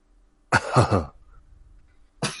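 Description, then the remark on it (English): A voice does a gravelly, exaggerated imitation of the cartoon character Butthead's cough, one loud raspy burst, followed by a short pause and the start of another cough. “A lot of and I need that butthead cough.”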